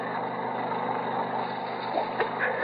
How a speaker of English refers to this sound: The sound of a two-cycle engine was coming from below. Probably a generator.